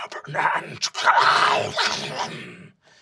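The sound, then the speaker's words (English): A person imitates an owlbear, growling like a monstrous beast with a rough, snarling roar for a few seconds with brief catches of breath between bursts. “You see some magic sort of moves between them, and you see one of them goes, hoot, growl, egg for owl bears.”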